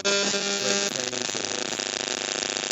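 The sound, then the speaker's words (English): Loud electrical interference: a steady buzzing hum with harsh static, shifting after about a second into a rapidly pulsing, crackling buzz that continues to the end. No voices. “There's that interference.”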